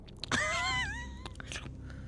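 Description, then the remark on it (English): A mouth Foley imitation of squelching footsteps for a story read aloud: a short, drawn-out voiced tone that slides downward in pitch, followed by a few brief, wet clicking squelches spaced unevenly. “Squelch, squelch, squelch. Can we some Foley, please?”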